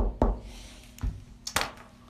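Three dull knocks on a wooden surface, spaced unevenly about half a second to a second apart, fairly soft, with no talking.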